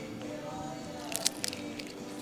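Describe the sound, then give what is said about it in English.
A bite into a large, fully filled smoked salmon taco in a crunchy fried tortilla: a quick cluster of sharp crackles followed by a softer crunch, over a low steady background hum. “And there's a little bit of crunch for the tortilla, too. It's a crunchy tortilla.”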